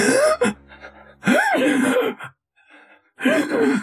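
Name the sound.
voice imitating ragged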